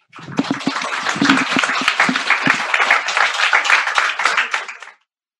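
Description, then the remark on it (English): An audience claps in welcome for a speaker at the start of a follow-up question-and-answer session, steadily for about five seconds, a dense patter of many hands with sharp individual slaps on top, holding a fairly even loudness before stopping abruptly. “So let's welcome Alok ji with a lot of claps and joy.”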